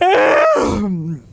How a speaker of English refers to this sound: big yawn there.